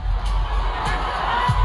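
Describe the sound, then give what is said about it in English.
A huge stadium concert crowd of about 60,000 people cheers in a dense, continuous roar that holds steady throughout, with no single voice standing out from the wash. “took him right up there in front of 60,000 people, and it sounded like this.”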